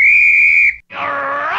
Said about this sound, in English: And the original whistleblowers, naturally enough, were people who actually blew whistles. So that would be like a referee in football or boxing who might blow the whistle in order to stop the proceedings.